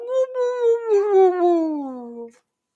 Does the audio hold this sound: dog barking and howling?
yes